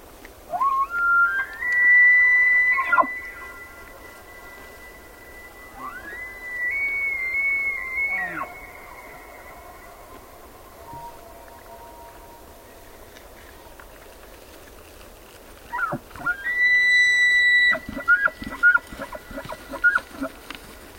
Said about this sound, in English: Jonathan Storm recorded these two elk bugling across a high meadow in Yellowstone National Park, making their best show for females on a cool autumn evening.